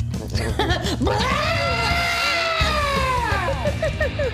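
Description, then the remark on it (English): A goat lets out a loud, piercing scream that holds for a few seconds, with shorter wavering bleats just before and after, over a steady low rumble in the background. “It's the new podcast animal, the screaming goats.”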